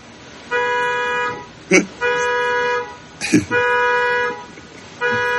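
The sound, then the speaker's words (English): A car alarm in a parking lot, set off by kids in the driver's seat, blares in repeating cycles, long steady electronic tones broken by short, sharp bursts between them, loud and continuous through the whole stretch. “So this is what happens sometimes when the kids get in the driver's seat in the parking lot, and then they don't know how to turn off when they've set a car alarm.”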